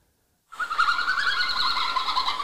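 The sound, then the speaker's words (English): After a brief silence, a small mammal's mating-season call starts up: a steady, fairly loud stream of high twittering, tweeting and whistling that warbles continuously without pause to the end. “It's called a twittering, tweeting, and whistling.”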